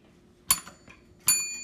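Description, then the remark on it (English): A small bright bell is struck twice: the first ring is cut off almost at once, while the second strike rings on with a clear, high metallic tone. “The hell happened to the bell? Choking the bell.”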